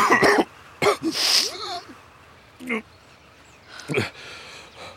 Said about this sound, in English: I'm coughing up blood again